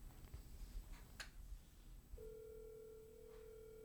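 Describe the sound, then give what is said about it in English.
After a low background rumble and a brief click, a steady outgoing-call ringing tone of a phone call to a friend starts partway through and holds unbroken to the end, clear and moderately loud with no voices. “God, do I love that ring.”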